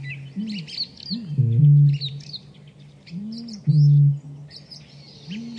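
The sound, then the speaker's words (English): A male bittern booming: two deep, resonant low booms, each preceded by softer gulping notes as he breathes in, while other birds chirp and twitter faintly in the background. “And it's remarkable because you can actually hear him breathing in first, like it's sort of boom, boom.”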